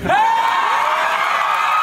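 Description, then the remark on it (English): A loud crowd at a MoveOn.org event roars in sustained cheering and wild applause, with a rising whoop standing out above the din for the whole brief moment. “But that was at a MoveOn.org event where she received that wild applause.”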